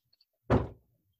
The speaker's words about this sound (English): Yeah, and if you hear that banging, that's my dogs that are locked out of the attic, who are angry that they are locked out of the attic and expressing that displeasure.